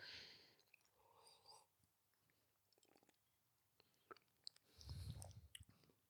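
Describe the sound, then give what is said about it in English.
Quiet mouth noises of someone sipping a drink from a glass: soft slurps and small wet clicks, then a low breathy exhale near the end, with no talking. “Should we have a sip?”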